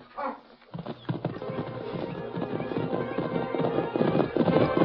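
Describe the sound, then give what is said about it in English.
Rapid hoofbeats of a horse clatter in a steady galloping rhythm as a man gets to his horse and rides away, growing louder and denser, with a horse's whinny near the start, fairly loud. “Getting to his horse.”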